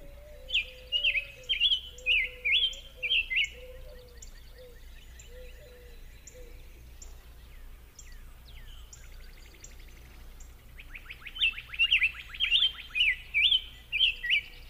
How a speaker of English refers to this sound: Next, let's listen to the song of the ticky-tuck, or summer tanager, and be sure to ignore the background bird song on this track that includes doves, cardinals, and others. So let's listen to the song of the summer tanager.